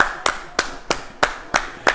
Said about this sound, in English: Okay, good. He's walking. He's walking. Clap it up, dude.